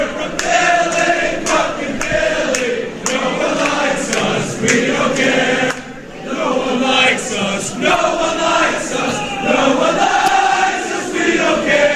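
A large crowd of fans sings a rhythmic chant together, voices loud and sustained in unison, with sharp claps or drum hits punctuating the melody and a brief dip midway before the singing swells again.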